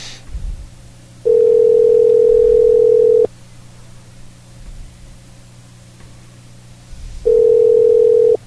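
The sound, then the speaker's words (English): A telephone ringback tone from an outgoing test call to a number in Chicago, placed on a phone show on Cacti Radio: two steady, loud two-second rings separated by a long silent pause, heard through a phone line with faint background hiss. “Okay, Domino's wouldn't answer, so we're going to do our test call now.”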